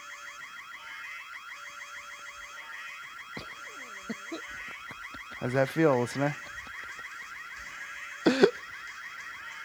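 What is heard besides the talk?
car alarm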